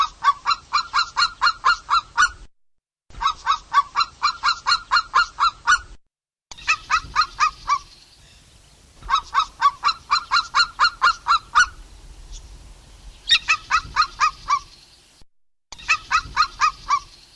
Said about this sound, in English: What you've just heard was Polish eagle. The white-tailed eagle has been a symbol of the Polish nation since the origin of Polish state. Poland is one of the favorite homes of this large bird of prey, the largest bird inhabiting Poland